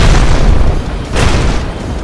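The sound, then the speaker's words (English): A deep, rumbling explosive boom of a torrent of lava erupting from the mouth of a magma squid roars loudly and continuously with heavy low-end energy and a sharp burst of crackling noise partway through. No voices. “The Guardians dive out of the way of a torrent of lava that erupts from the mouth of the magma squid.”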